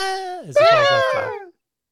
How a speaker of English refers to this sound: Oh, and we get a Wilhelm scream.